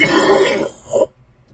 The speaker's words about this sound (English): Excuse me. See, told you I might be coughing. You never know.